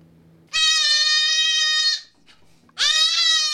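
A baby goat screams twice, loud: a long, piercing bleat lasting over a second, a short pause, then a second shrill cry starting. No one speaks.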